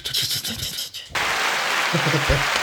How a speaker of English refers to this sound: That was the dumbest like half applause noise we made on our own.